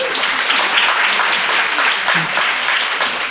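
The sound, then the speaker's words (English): A crowd applauds steadily for a few seconds, a dense, even wash of many hands clapping at once, loud and continuous with no pauses, with faint voices mixed underneath. “Yeah, we're preaching to the choir a little bit, but we definitely got more clapping on the kind of crisis type.”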